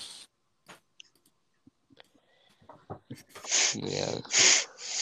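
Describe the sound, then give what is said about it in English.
Sparse, sharp clicks of computer keyboard keys clacking at an irregular pace, fairly quiet, followed by louder voice-like bursts near the end. “I can hear his keyboard clacking.”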